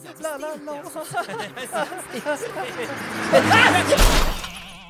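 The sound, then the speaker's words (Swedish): A voice imitates the sound of a car crash, building from revving vocal noises into a loud, harsh burst like smashing metal near the end, energetic. “så var vi så engagerade i det att bilen krockade. Nej! Oj, negativt. Det lät ungefär så här.”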